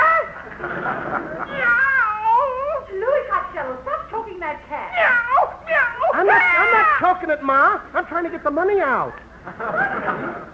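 A cat meows over and over in drawn-out, wavering cries, fairly loud, with barely a pause across the whole stretch, some calls rising into yowls.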